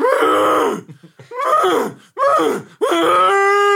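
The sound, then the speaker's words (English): A voice imitates cows mating with four loud, drawn-out groaning moos, each sliding downward in pitch, separated by short pauses, the last one steadier and more sustained. “And in the background, there are cows loudly making love.”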